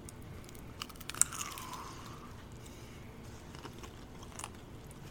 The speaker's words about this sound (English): Well, thank you for listening to us eat these lovely hot dog tacos.